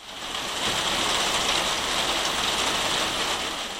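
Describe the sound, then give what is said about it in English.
Steady, heavy rain pours down in Wales in a continuous dense hiss, heard from indoors at a window, fairly loud and unbroken for the whole stretch with no voices. “It's pretty much rained non-stop since I got here on Thursday night.”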